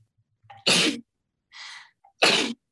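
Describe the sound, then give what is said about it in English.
Two loud sneezes about a second and a half apart, each preceded by a quick sharp inhale, with a softer breathy intake between them. No one speaks. “You're choking and you're sneezing”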